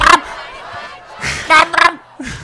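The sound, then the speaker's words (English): A recording of an angry crowd, from a free YouTube compilation of angry crowd sounds, shouting in loud, rough bursts: a brief roar at the start, a lull, then several sharp raised-voice outbursts in quick succession. “There's a list of angry crowd songs.”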